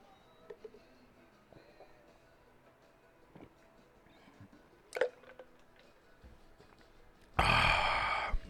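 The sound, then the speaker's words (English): Quiet wet swallowing and small liquid sounds as someone lying on a bed drinks water, a brief clink midway, then a loud breathy exhale right after the last gulp. “Excuse me, I have to take a drink here.”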